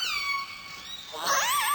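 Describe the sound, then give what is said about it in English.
Resident killer whale calls: a steady, high, harmonic squeal fades, then a louder warbling call rises and bends in pitch. No one is speaking. “He's the person who discovered the role that vocalizations play in the cultural evolution of these whales.”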